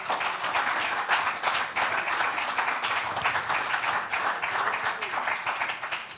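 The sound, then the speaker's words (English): An audience at Life Point Church applauding, giving the Lord a hand clap at the start of Sunday School, a dense, steady wash of many hands clapping at once, even and continuous without pause. “Let's give the Lord a great hand clap together.”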